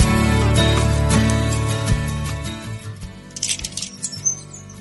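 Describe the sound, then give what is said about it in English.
Birds chirp outdoors among many trees in quick, high, scattered bursts, growing clearer in the second half as a dense, low tonal backdrop fades away. Nobody speaks. “We're listening to the birds here outside trying to speculate what kind of a bird I can't quite see where they are.”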